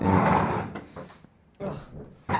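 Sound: door being opened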